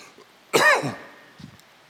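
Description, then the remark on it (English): A single loud cough with a rough throat-clearing rasp, lasting under half a second, followed by faint rustling and quiet background noise; no one speaks. “Honey, do you have a cough drop? I'm sorry.”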